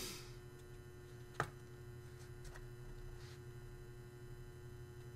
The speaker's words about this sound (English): I think that's my fridge that's buzzing.